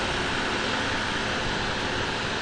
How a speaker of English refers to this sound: planting the soybeans down there with the little Massey Ferguson tractor.